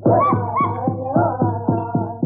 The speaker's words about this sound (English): Hear those Indian tom-toms? They're beating out a throbbing rhythm for an ancient tribal dance, the Indian corn ceremonial dance, a tribute to corn, the principal food of the red man.